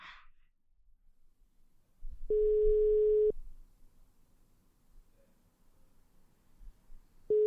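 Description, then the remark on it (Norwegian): A telephone ringback tone: one steady, clear beep lasting about a second, a long quiet pause, then the next beep starting. No one speaks. “Dette er podcasten Bare Bra som ringer deg.”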